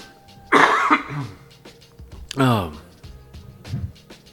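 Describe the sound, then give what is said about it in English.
A loud cough followed by a second harsh throat-clearing cough, then a softer grunt as someone struggles to clear their throat. No words are spoken. “God, I just cannot seem to clear my throat.”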